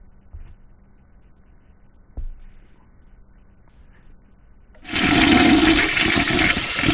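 A toilet flushes loudly, a sudden rushing roar of water that starts after a few seconds of quiet room tone and a couple of small knocks, then keeps churning.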